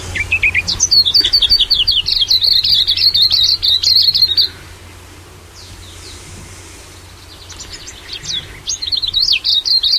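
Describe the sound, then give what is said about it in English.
A bird sings a rapid, warbling song of high chirps and twitters for about four seconds, pauses, then resumes another bright trilling phrase, clear with faint background hum. “I guess you have a sample of a song, a bird song that these guys play.”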